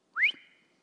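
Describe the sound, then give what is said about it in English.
A single sharp whistle sweeps quickly upward in pitch, then settles into a thin held tone that fades away over about half a second, with no voices around it. “Don't get focused on the whistle.”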